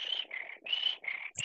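Crickets chirp in steady, buzzing trills that come in short alternating bursts, clear, with no voices present.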